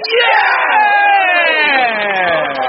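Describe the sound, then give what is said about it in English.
A large stadium crowd erupts in cheers after a goal by Megan Wynne, a half volley from the edge of the box into the top left-hand corner, many voices shouting and whooping together in a loud, sustained roar that slowly sinks in pitch over a few seconds. “Oh, great goal.”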